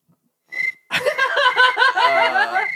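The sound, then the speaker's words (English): A person imitates cricket chirping with their voice: a brief high whistle, then a loud, rapidly pulsing trill that keeps up for about two seconds. “Do the cricket sound.”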